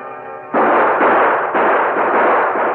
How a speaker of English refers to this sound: The Lone Ranger and Tonto saw the gunfire.